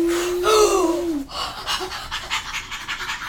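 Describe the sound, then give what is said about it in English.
Air is blown into a balloon: a short, squeaky whistling tone gives way to a run of quick, breathy puffs, fairly loud, with no talking. “Now the elephant, why is the elephant breathing so weak? The balloon is so quick.”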